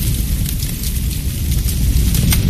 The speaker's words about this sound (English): In the middle of the night, there are two sounds a spreading household fire can make. Here's the first.